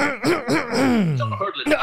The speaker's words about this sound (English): I just had to clear my throat there.